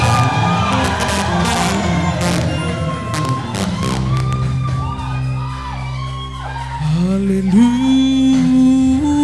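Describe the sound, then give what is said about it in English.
A large audience erupts in sustained shouting and cheering, many voices whooping and calling out together, loud, with rising cries toward the end. “Lift up your voice if you have one and shout!”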